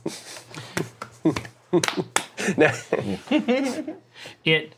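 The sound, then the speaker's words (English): A patterned sequence of sharp hand claps, like a clapping version of an Ocarina of Time song, some in quick pairs and others spaced apart, sounding loud and crisp against a voice talking or vocalizing underneath. “It's like a, let's say it's, he claps out like a, it's like a clapping version of an ocarina of time.”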